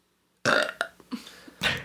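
A loud burp bursts out after a moment of silence, followed by a few smaller gulping hiccup-like sounds and a second raspy burp at the end.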